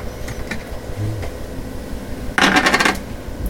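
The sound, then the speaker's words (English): A cap is twisted off a bottle of eggnog, a quick burst of rapid plastic clicks and scraping lasting about half a second, preceded by a few faint taps and handling noises. “And I'm going to the cap off here.”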